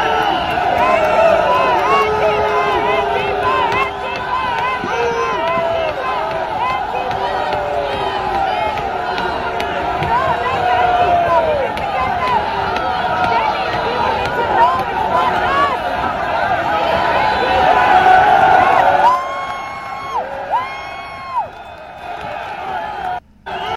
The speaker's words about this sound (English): So they were cheering when they got the guy down and stopped him from trying to break the window.